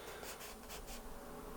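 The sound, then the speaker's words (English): A small paper band slides off a bundle of prop-money banknotes in a few quick, dry papery swishes, fairly quiet, with no one talking. “Plus, if you move this little piece of paper that's got the bundle together, check this out right here.”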